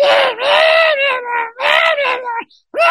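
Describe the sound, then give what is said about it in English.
A man screams loudly in drawn-out, strained yowls, imitating the cat noises of Little Cat, a character from a pitched Adult Swim show called Big Cat, Little Cat. There are several long wavering cries close up, with brief breaks between them. “And he gets in our faces, and he's like, Little Cat's kind of fucked up, and he's walking around like this, and he starts screaming cat noises in our faces, and then he says, but the only person who can understand Little Cat is Big Cat.”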